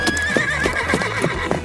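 A horse whinnies loudly, a shrill wavering neigh, while hooves clip-clop in a steady rhythm underneath.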